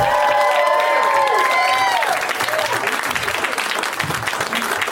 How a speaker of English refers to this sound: I was backstage laughing, having a nice time with the guests, and then I heard the clapping. I was like, what could they possibly be clapping to? Doesn't sound like that could be a song.